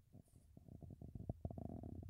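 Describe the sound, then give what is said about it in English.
A low rumbling from a microphone being moved, with irregular thumps and scraping bursts that build over about two seconds, sounding a bit like a gassy rumble. “Speed moving my microphone”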